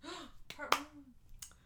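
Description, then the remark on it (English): One sharp, bright hand clap cuts in over a stretch of excited talking; a voice keeps going around the single crisp smack. “I don't know why I clapped.”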